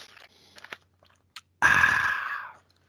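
Someone drinks Diet Mountain Dew: a few soft clicks and taps, then a loud, fizzy rush lasting about a second before it fades out. No one speaks.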